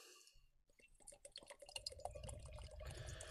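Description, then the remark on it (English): Beer glugs from a 440ml Totally Brewed can into a glass, starting with a few splashy bursts, then a steady pour whose pitch climbs as the glass fills, ending in a foamy fizz. “Let's get pouring.”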